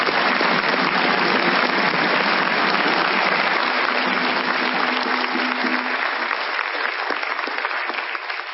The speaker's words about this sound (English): But before she says anything, I think we need at least one more time, you know, to give Sister Weish a round of applause just because she is here.